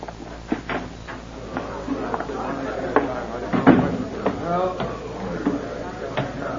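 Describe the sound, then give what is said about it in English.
A door is opened and shut, with a few latch clicks and a solid thump midway, over a low murmur of indistinct voices and background noise. “Through this door, Chief.”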